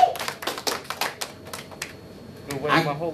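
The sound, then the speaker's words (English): A burst of hand clapping, a quick irregular run of sharp slaps for about two seconds, thinning out before a voice comes in at the end, clapping to celebrate the Chiefs winning the Super Bowl. “So if you're a Chiefs fan, you need to know, clap that up.”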